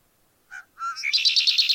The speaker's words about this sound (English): A male red-winged blackbird, they're among the earliest birds to set up territories.